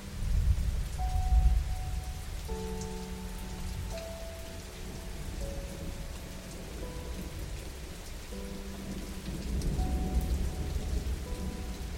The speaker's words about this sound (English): There's no pause, no break. The water is constantly moving.